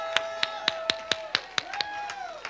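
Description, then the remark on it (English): An audience at a church service claps hands in praise to God in a steady, quick rhythm, about nine sharp claps in two seconds, over sustained organ-like tones, with no talking. “who will stand on your feet, clap your hands unto the Lord.”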